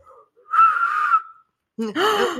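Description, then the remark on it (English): A breathy, airy attempt at a whistle by someone who doesn't know how to whistle: one wavering note held for under a second, mixed with a lot of rushing breath, followed after a pause by a voice. “Was that a real whistle? Kind of. I know you don't know how to whistle, but that's the best I've heard.”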